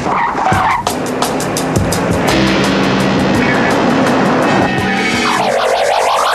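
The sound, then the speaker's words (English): A car roars by and its tires screech in a long, loud skid as it swerves while trying to run a woman down, the squeal rising and bending in pitch before the engine pulls away. “Act 2 begins with Crosby narrowly escaping said rundown, but not before planting a tracking device on the car”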